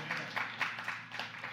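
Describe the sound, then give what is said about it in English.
Sparse clapping from four people during a sermon, a handful of uneven, bright claps spread across a second and a half, with a low murmur underneath. “The four people clapping get it.”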